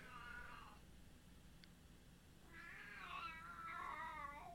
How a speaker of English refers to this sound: The cat's unhappy.